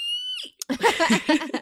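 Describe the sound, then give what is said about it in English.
A cat trying to get into a room yowls and meows insistently, starting with a sustained high-pitched cry, then a quick string of warbling vocal calls, fairly loud. “There's a cat trying to get into my room.”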